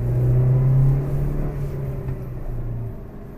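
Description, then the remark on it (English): A car engine drones loudly with a deep, steady hum, surging briefly as it accelerates and then easing off while the vehicle keeps driving. No voices. “The driver sees my car and turns the wrong way down a one-way street.”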